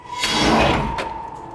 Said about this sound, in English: What's the point in this whole airlock thing if it just opens like a grocery store?